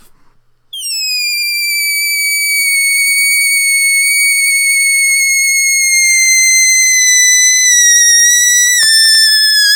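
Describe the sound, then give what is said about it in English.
A balloon lets out a shrill, steady squeal that begins abruptly and holds for about nine seconds, its pitch sagging slightly and dipping briefly near the end. No voices are heard. “You know, when you're bored, you just want to make, just want to like, just see what a balloon noise makes.”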